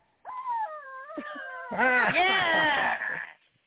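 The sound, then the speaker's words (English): A noise-making chicken dog toy, which sounds when it is picked up, lets out a long, nasal, wailing squawk lasting about three seconds, starting as a steady whine and then breaking into a louder, warbling, strained cry. “the dogs used to have this chicken toy that makes noise when you pick it up, like, rawr!”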